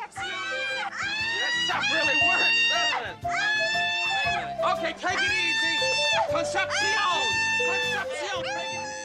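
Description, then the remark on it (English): A woman screams at full volume in long, wavering bursts separated by brief gasps, loud, with other voices and busy commotion running underneath. “she's just screaming full volume for this whole sequence.”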